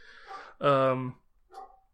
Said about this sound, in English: Apologies for this dog barking its head off currently.